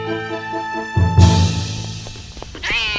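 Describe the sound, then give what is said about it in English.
A short cat meow, rising then falling in pitch, comes at the very end after a dull thump and a low rumbling burst, with steady electronic tones humming beneath. “Kitty, kitty, kitty! Come back!”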